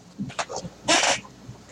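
A female conure parrot lets out a few short chirps, then a loud, harsh screech of about a third of a second, with no talking.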